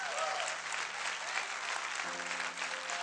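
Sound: audience applause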